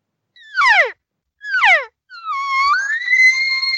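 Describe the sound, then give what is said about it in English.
An elk caller imitates elk: two short, descending nasal mews of an elk cow, then a long, high rising bull bugle that holds a whistling tone to the end, loud and with no talking. “You see, I'm going to go right to those two or three cow sounds and straight into the bugle.”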